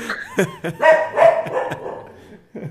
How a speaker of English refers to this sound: There's the guy on a bicycle just outside the gate, and the gate is kind of far from here, so. Man, I got a good guard dog.